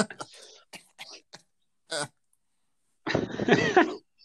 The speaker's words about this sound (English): Cough.